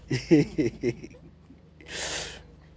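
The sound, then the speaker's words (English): A few short voiced sounds, then a loud, hissy breath blown right into the microphone, lasting about half a second before fading out. “Who is breathing?”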